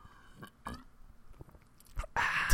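Close-miked sipping from a drink: soft wet mouth clicks and a couple of gulping swallows, ending with a louder breathy, slurpy burst right at the mic.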